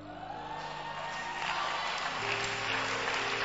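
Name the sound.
audience clapping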